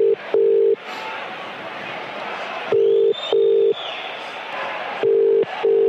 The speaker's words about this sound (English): We are ringing the Queen Victoria pub in Aldershot. It is an official supporters pub.